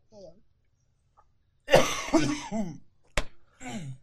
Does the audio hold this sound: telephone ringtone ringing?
no